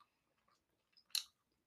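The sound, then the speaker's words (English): Wet chewing of three sour Skittles in a woman's mouth, with a few small clicks, then one louder crunchy bite standing out briefly against quiet; no one speaks. “You might be able to hear some chewing there.”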